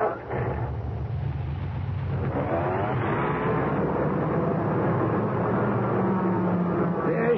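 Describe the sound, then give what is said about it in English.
A car engine idles and revs, a steady low rumble with rising and falling whine as the car is slowly backed out of a shop, heard alone without talking. “we gotta give Ben his car. Let me back it out the shop.”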